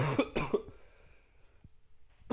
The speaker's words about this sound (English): Excuse me. I need a cough button.